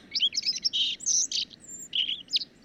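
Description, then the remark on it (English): A bird sings a quick, varied song of bright chirps and trills, clear, with short pauses between phrases and no voices. “but you'll start to hear bird songs.”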